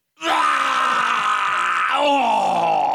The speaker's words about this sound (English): Hold on, I'm still vomiting!